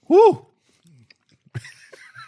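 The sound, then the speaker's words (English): Munching on hot sauce, with soft wet chewing and crunchy bursts, opening with a loud voiced murmur and ending in a denser stretch of noisy crunching mixed with vocal sounds. “The sound of us munching down on some hot sauce.”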